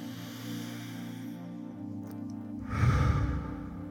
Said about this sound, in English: This time, listen to the fork ring and dissipate. And then when there's no more ringing, change your anchor to your breath.